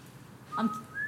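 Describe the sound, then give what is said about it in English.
A person whistles briefly and badly, a thin wavering tone that sits flat, jumps up, then holds a higher pitch near the end, fairly quiet. “If I whistle, very badly.”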